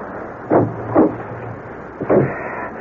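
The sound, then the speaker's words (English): A few muffled, solid thumps of a car door being shut on a road, spaced unevenly over a steady low rumble and hiss, with no one speaking. “I'll close the door and come around the other side.”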